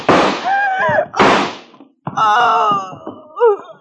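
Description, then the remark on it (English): A door creaks open with drawn-out, groaning hinge squeals, broken by a couple of heavy thuds as it swings and knocks against its frame. “The door.”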